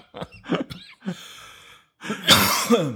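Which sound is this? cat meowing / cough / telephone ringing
cough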